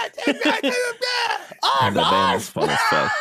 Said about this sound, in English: Oh, my bad. SpongeBob screaming. Jesus Christ.